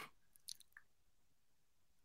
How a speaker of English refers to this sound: Don't disgustedly sip your Celsius at me and disgust of my takes. I just took a glorious drink and took a mad sip. Yeah, your sip looked mad, like you're mad drinking in my face.